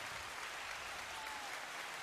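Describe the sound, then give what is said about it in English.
Muffled applause sound effect played by clicking and holding a button: a steady dense patter of many hands clapping at an even level for about two seconds, dull and softened with no voices. “Click and hold it. Muffled applause.”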